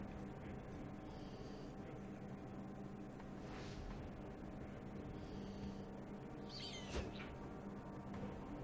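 Several faint, shrill screeches from a video game eagle sent to attack another player's eagle come and go at intervals over a steady background hiss, with no talking.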